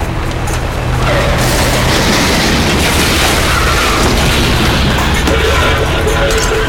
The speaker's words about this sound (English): Hold on, I'm going through the wall of cars.